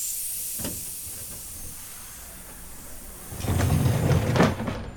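A train pulls into a station in Chicago, its steam hissing steadily with a low mechanical rumble, then surging into louder, bursty hissing and clanking near the end. No one speaks.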